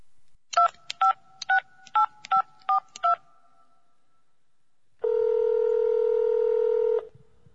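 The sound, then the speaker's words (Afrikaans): Eight quick touch-tone beeps as a phone number is dialed to call a brother, followed by a pause and then a steady two-second ringing tone. “Ek beter maar my broer bel om uit te vind wat hier aangaan, tenminste bly hulle dan nog in dieselfde land.”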